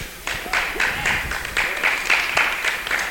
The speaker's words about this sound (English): I didn't say that for claps.